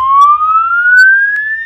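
A fire alarm sounds a single loud, continuous electronic tone that glides steadily upward in pitch like a slow siren wail, with no voices over it.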